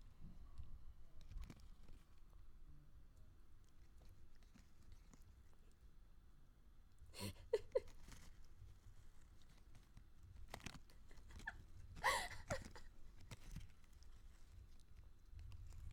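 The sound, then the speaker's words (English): A cat chewing on an empty plastic wrapper from hickory smoked jerky, heard as faint, irregular bursts of crinkling and crunching separated by quiet stretches, with a few sharper crackles in the middle. No one speaks. “He's chomping on the plastic.”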